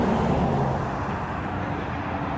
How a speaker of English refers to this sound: So here's the bus.